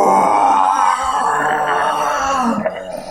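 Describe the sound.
During a Dungeons & Dragons game, a person growls out a long, loud imitation of a brown bear's roar, a rough, gravelly groan that holds steady for about three seconds before trailing off.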